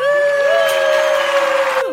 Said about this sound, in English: We did a sound effect with hands clapping.